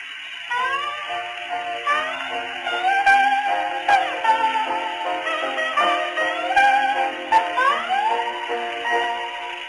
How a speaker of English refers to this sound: Pathé reproduces each and every tone faithfully. Hark to the delicate tones of the Hawaiian guitars and ukulele